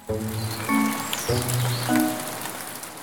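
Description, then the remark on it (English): Steady rain patters on a surface, a dense, even hiss that runs the whole time, with soft sustained musical notes layered over it. No one speaks. “When they get really full, that water falls to the Earth as precipitation. You may know precipitation as rain or snow.”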